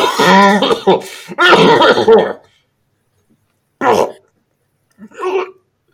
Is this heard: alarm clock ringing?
no